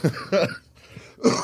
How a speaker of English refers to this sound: As you hear the cough, that's not COVID related. It's just the fat shit. Yeah. Smoking cigars, my bad.